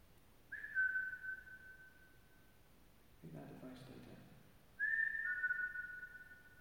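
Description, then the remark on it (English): A person whistles two long, steady notes, each held for about two seconds, with a short muffled rustling noise in the pause between them. No one speaks. “All because I whistled.”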